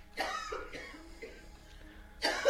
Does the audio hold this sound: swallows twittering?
no